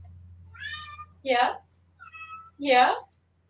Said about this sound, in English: Oh, I heard a meow. Yeah, he turned around. I like leaned down. He turned around. He's just like, ah!